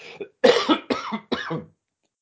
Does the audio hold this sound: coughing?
yes